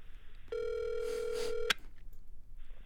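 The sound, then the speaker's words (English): One steady electronic ringback tone of an outgoing phone call, about a second long, sounds through the line, followed by a quiet line hiss; the call goes unanswered to voicemail. Moderately loud, with no talking. “I hope he answers.”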